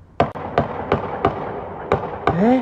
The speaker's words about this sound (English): With several bursts of gunfire.